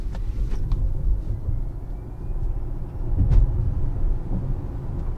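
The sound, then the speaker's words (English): A car accelerates with a steady, heavy road rumble and a faint whine climbing gradually in pitch, with no talking. “And for that magic moment of acceleration, let's see what this will do.”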